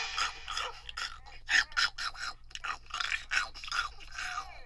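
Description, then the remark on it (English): Wet, crunchy chewing and munching in quick irregular bursts, a steady series of mouthy smacks and crunches with no talking, moderately loud throughout. “I had to eat her.”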